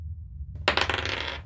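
A sharp clatter breaks out of a low background hum, followed by a rapid, bright rattling that lasts under a second as dice tumble across a hard surface and settle. It is a first roll, coming up about 28.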